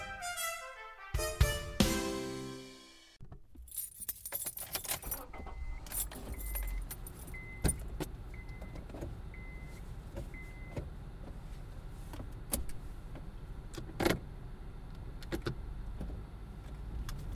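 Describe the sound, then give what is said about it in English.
Keys jangle briefly, then a car starts and drives back home, its steady engine and road rumble filling the cabin, with a repeating soft electronic chime and occasional clicks and thumps. “just in my car driving back home from our second outing.”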